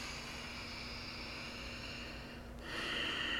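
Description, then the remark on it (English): A deep, audible breath, a long airy draw of air that swells and brightens into a stronger, hissing exhale near the end. No talking. “It can be like breathing our physical, tangible breath as things start to move through us, as we become aware of how we feel, how we are, and what the thoughts are and where they're taking us.”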